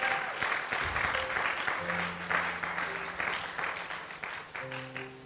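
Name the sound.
audience applauding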